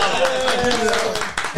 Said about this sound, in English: You know, round of applause.